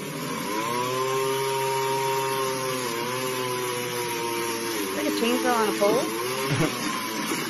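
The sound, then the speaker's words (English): A pole chainsaw drones loudly and steadily, its motor pitch dipping and surging near the end as the blade bites into wood. “Chainsaw on a pole?”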